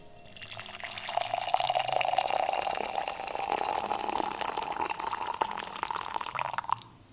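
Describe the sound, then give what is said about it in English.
Room-temperature water pours steadily into an empty cup for several seconds, a continuous splashing stream whose pitch rises slightly as the cup fills, then stops abruptly. “Into the same empty cup as I used before, I just poured away the water from just now.”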